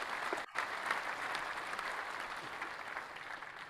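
A large audience gives a sustained standing ovation, the crowd not sitting down, with dense, steady clapping that holds at an even loudness throughout, a brief dip near the start and no voices heard over it.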